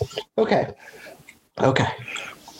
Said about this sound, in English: Oh my God, you're making me cough.